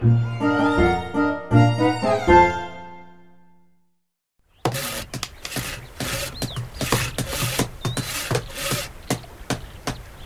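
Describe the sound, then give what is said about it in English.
A few sustained musical chords fade to silence, then a busy stretch of rhythmic workshop noise follows: steady repeated hammer blows mixed with the rasping strokes of sawing. “My hammering is all done hammered up. Lawrence? Yes, sir. My son is all sawed.”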